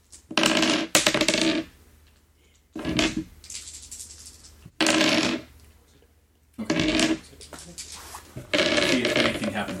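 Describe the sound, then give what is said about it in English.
Dice clatter and rattle across a hard tabletop in several separate rolls, each a loud burst of tumbling clicks followed by a short pause before the next throw. “Unfortunately, the dice didn't like you guys today and nothing fun happened.”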